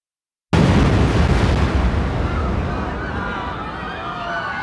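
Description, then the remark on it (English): A sudden, loud bomb blast from a van parked on the B2 level of the World Trade Center's underground parking garage in 1993 erupts from silence, then rolls into a long, heavy rumbling roar that slowly thins out, with faint ringing tones emerging near the end. “12 minutes later, the bomb went off.”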